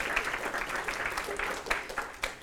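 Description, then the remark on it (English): An audience in a church breaks into applause, a dense, steady patter of many hands clapping at moderate volume with a few sharper claps standing out, and no voices over it. “And the fact that nobody is applauding right now is bumming me out.”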